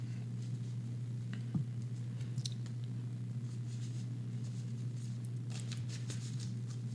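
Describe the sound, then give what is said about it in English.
A deck of tarot cards being shuffled: soft, scattered papery slides and a brief riffle near the end, quiet over a steady low electrical hum, with no one talking. “Gonna do some shuffling.”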